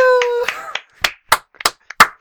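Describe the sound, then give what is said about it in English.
A short vocal whoop fades into a handful of sharp, separate claps, close and fairly loud, spaced unevenly over about two seconds, more like scattered clapping than a full applauding crowd. “The crowd's going wild.”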